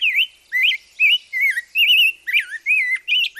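A rose-breasted grosbeak sings a rich, warbling song of about eight short whistled phrases in quick succession, clear, with no other sounds.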